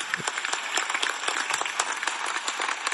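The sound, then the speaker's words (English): A round of applause for the Apex Team USA roster: many hands clapping in a dense, steady patter of sharp crackling claps that holds at an even level throughout, with no voices standing out. “Let me give them a round of applause.”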